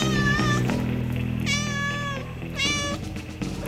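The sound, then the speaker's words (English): A black cat named BB meows three times in drawn-out, wavering cries, fairly loud, with short gaps between them and a steady low hum underneath. “Black Jacket, Black Tie, Black Cat. Everybody looks good in black. Isn't that right, BB?”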